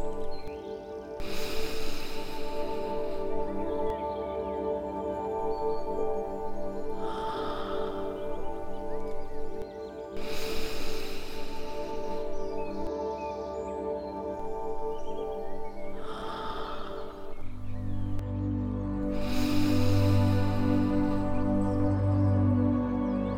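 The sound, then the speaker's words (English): Slow, deep breaths drawn in and let out during a guided deep-breathing exercise, a soft airy rush rising and fading roughly every few seconds, over a steady sustained musical drone with no talking. “Take a breath. And release. Keep going. Deep breathing.”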